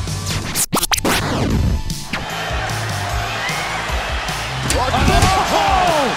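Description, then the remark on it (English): A sharp, loud metallic crack rings out near the start as Mysterio hits Balor in the face with a chair during a wrestling match, a couple of quick hard impacts in succession, followed by a sustained roar of the arena crowd with scattered voices. “Chair right to the face of Balor.”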